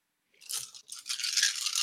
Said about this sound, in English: So, who's rolling dice? Jesus. I was. It's loud and we're recording.